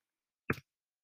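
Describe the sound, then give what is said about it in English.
A single brief keyboard keystroke, a soft clack with a quick double tap, as someone types a Google search, standing alone in otherwise silent surroundings. “You're gonna hear some weird typing sounds here.”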